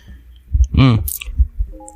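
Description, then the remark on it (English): Someone takes a wet sip of coffee at almost 5 in the morning, with soft mouth and swallowing noises, then a short voiced hum of satisfaction and a faint breathy hiss. “I'm gonna take a sip of my coffee here, guys.”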